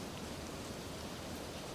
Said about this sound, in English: And yet, just in this nature, like this rain, it's offering this Dharma talk.